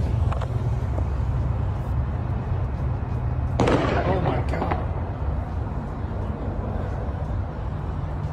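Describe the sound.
A sudden volley of gunshots, fired at a car in a drive-by shooting involving Sean Kemp, cracks out in a dense burst lasting about a second, set against a steady low rumble and faint background voices.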